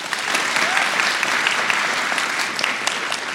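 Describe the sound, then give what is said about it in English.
Steady, dense applause from a crowd clapping to vote for Elon Musk as their answer in a guessing game, many hands clapping at once in a loud, even wash of crisp claps that holds without a break for several seconds, with no one speaking. “I think Elon got the win on the claps.”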